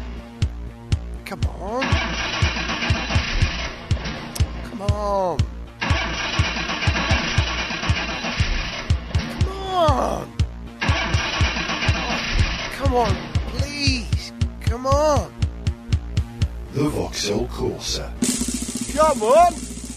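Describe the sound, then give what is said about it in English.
A Honda Civic car engine cranks and turns over in three loud bursts, then settles into a rough idle near the end, with a man's voice talking throughout. “Need a car that doesn't just have clean lines, but cleans up as well? Then you need the Honda Civic”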